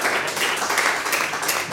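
A brief round of applause from a small group after a quiz contestant answers a trivia question correctly, dense overlapping claps forming a steady, moderately loud patter with no pauses, lasting under two seconds.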